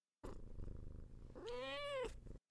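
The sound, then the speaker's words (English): A male pet cat purrs low and rough for about a second, then lets out a single drawn-out, rising-and-falling meow before going quiet. “Talking to my cat, he's giving me a stare down right now like he heard you, and he's just like, you.”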